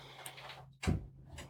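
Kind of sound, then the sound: household object, door being shut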